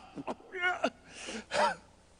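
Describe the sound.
A person imitates gasping for air: a few quick, ragged breathy gulps followed by two longer strained inhaling gasps, fairly loud, with no other sounds.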